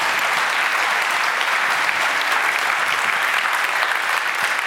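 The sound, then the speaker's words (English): Sustained applause from an audience after a prayer, a dense, steady wash of many hands clapping at once, loud and even throughout with no individual claps standing out. “Give another clap.”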